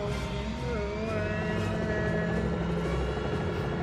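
A helicopter's engine and rotor roar steadily and loudly, a dense, continuous drone with a whining tonal edge over low rumbling, holding level throughout.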